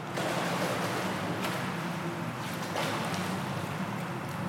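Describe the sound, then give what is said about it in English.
Steady, rushing water noise from someone swimming in a gym pool during a swim lesson, with a couple of brief splashy surges breaking through the constant churning wash. No one speaks. “And here's a little bit of me mid-swim lesson.”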